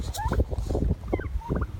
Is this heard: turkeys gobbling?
yes